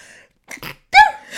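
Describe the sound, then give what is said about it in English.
A single loud human sneeze: a brief wind-up of breathy, catching inhales, then a sharp, forceful burst that tails off quickly. No one talks. “Oh, I'm sorry, I'm going to sneeze. I've got a really terrible sneeze.”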